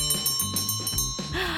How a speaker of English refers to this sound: And there's that beautiful opening bell. That bell, I've heard it many times. I would never describe it as beautiful.